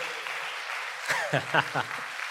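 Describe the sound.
Steady applause from an audience, a dense even patter of many hands, with a few brief voices calling out over it partway through.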